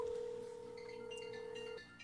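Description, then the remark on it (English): A single steady ringback tone from an outgoing phone call hums for nearly two seconds, then cuts off, with faint higher electronic beeps in the background and no voices. “Hold on. I'm make a phone call.”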